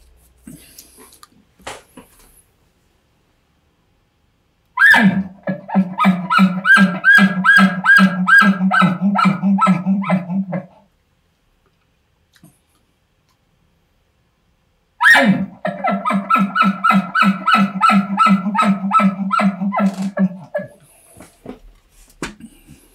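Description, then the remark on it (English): Two imitated elk barks, each a sharp, loud call that runs straight into a long string of rapid, guttural chuckling pulses, separated by about ten seconds of silence. “So there's just a couple of different examples of barks and chuckles following it.”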